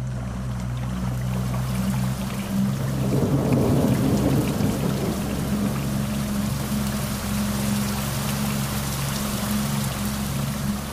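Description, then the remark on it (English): A thunderstorm over a lake with heavy, steady, straight-down torrential rain and no wind, while a deep rumble of thunder swells in the middle and fades. No voices, just the dense roar of the downpour. “The storm comes across the water quickly, but luckily, there's no wind at all.”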